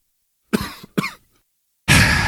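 Two sharp coughs in quick succession, followed after a short pause by a loud, harsh burst of noise that runs to the end. No one speaks.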